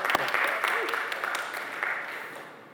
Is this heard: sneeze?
no